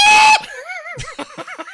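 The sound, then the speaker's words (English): A person lets out a loud, piercing scream, then trails off into wavering, warbling wails and a few short yelping bursts, with no other sounds around. “All right, here's me screaming one more time.”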